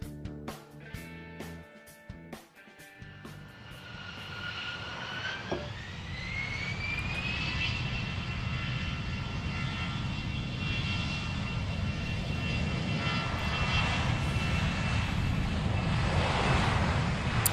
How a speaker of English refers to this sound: Lovely sound. Fantastic. Of a Rolls-Royce engine. I know. It's gorgeous, isn't it? That's actually the noise from this Lego aircraft.